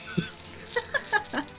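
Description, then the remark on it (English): Small Die Hard brand metal dice clinking together in a quick series of bright, ringing taps, about five distinct clicks with a jangly, rattling quality, fairly soft overall and with no voices. “This is some other metal dice. Yes, you can tell from the lovely clinking, which are basically their flagship product.”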